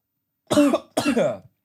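Two loud, harsh coughs in quick succession, the second one longer and rougher, like someone clearing a choked throat after swallowing water the wrong way. No talking.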